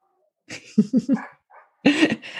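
A dog barks in a quick string of short, sharp yaps, pauses briefly, then lets out another louder burst of barking. No one speaks.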